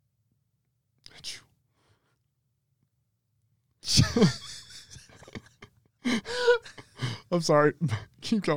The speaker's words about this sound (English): Bless you.